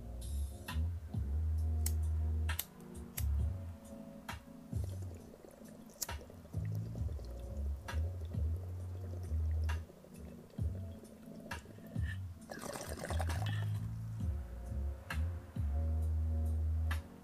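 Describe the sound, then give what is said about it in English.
Steady gurgling of water bubbling in a water pipe being smoked on a bunk, with low rumbling bursts and sharp clicks and pops repeating throughout; no one speaks. “Can you hear the water and the smoke from my bunk?”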